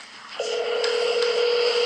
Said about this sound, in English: It's ringing.